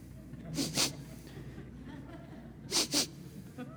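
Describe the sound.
A person imitates sniffing with their voice, mimicking pastors sniffing each other out at their denomination's General Assembly: two quick pairs of sharp, breathy sniffs, spaced a couple of seconds apart, fairly loud against a quiet background.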